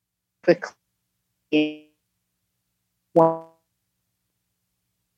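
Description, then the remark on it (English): A voice on a phone call comes through in three brief, clipped fragments separated by dead silence, as the call connection breaks up and drops out between snatches of speech. “Or were you broke up? Are you back?”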